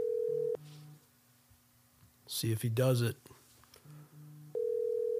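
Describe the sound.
An outgoing phone call's ringing tone sounds in steady electronic bursts, pausing and returning near the end, with a man briefly speaking over the line between the rings.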